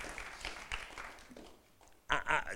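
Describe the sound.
Audience applause at a conference, a dense patter of many hands, rises briefly and then thins out and fades. A voice then starts speaking loudly over the last of it.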